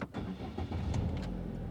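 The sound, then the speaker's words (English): A car engine turns over and settles into a steady, low rumbling run, with no voices, as the car heads off northeast to Inverell. “it's time to get back in the car and head northeast to Inverell”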